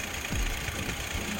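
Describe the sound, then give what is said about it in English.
A Kia Sorento SUV engine idles with a steady, even hum, low rumbling pulses beating underneath a constant hiss. Loudness holds level throughout, and no one speaks. “And I had no issues with this car when I got this handed to me, so yeah, I mean, engine runs good, no cracks or damaged seals or anything.”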